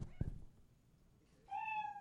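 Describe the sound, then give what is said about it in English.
A single loud cat meow sound effect with a clear harmonic tone, sustained for about half a second after a brief low thump and a quiet pause, signalling that a comedian's 60 seconds are up. “You know your time is up when you hear the sound of a kitty.”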